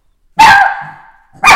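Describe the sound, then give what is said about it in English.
A dog barks loudly, one sharp bark trailing into a high whine, then another bark starts right after, energetic and agitated. “I may need to pause this here thing because our TikTok dog is going bananas”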